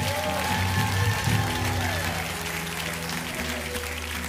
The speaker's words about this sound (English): Give these people a great big clap offering. Tell them how proud we are.